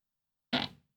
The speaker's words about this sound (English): … just farted right into the microphone